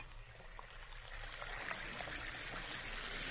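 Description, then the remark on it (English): Two Alka-Seltzer effervescent tablets, dropped into a glass of water, fizz with a steady, dense crackling hiss that grows slightly louder partway through and continues without pause. No one speaks. “You hear that fizzing, sparkling sound?”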